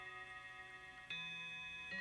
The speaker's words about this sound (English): At last, the clock began to strike midnight.